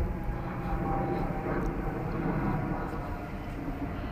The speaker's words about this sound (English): There's a plane flying overhead. Don't know where that's going to.